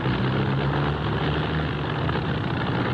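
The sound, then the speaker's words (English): A propeller aircraft engine drones loud, running a bit rough, with a low throbbing hum that holds steady throughout and no voices over it. “I don't like the sound of that engine.”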